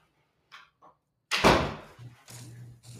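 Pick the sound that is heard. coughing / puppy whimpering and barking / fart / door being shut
door being shut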